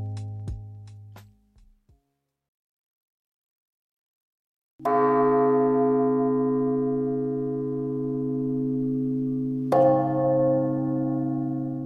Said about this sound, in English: What do you do with a bunch of old church bells that weigh more than an F-150 pickup truck? That's the problem Montreal's Sacré-Cœur de Jésus Church was trying to solve, or risk losing the bells for good.